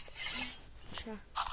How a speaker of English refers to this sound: I'm chopping the steak.